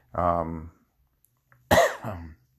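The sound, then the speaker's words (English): A fairly loud cough from a person with a slight tingle in the throat: first a short voiced throat-clearing grunt, then after a brief pause a sharp, breathy cough burst trailing into a low voiced rasp. “Now, I'm coughing a little bit because I have a little weird tingle in my throat.”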